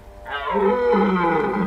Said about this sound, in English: The creature roared, sending out a torrent of spit that smelled of infection. The beast's entire body shivered with murderous anticipation.